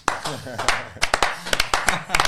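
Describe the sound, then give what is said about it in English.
A few people clap their hands in sharp, uneven bursts to welcome guests Juande and Javi López, each clap crisp and fairly loud, while a voice talks underneath at the start. “We're all clapping each other.”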